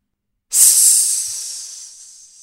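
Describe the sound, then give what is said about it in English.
A loud, bright hiss bursts in abruptly after a short silence, then holds as a steady airy rush that slowly fades over about two seconds. No one speaks. “That line ends with, parentheses, loud hiss.”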